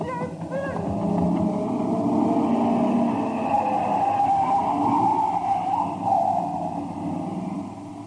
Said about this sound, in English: Hey, that car coming from the farmhouse, it's heading right off the road